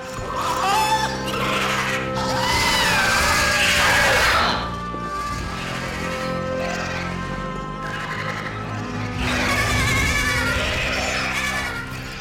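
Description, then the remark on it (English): Loud, shrill creature screams, young dragons shrieking in high, wavering, horse-like cries that rise, ease off, then swell again in a second piercing burst, harsh, with no talking. “And then you hear one of the most blood-curdling, heart-wrenching screams at the end of that when they realize what has just happened.”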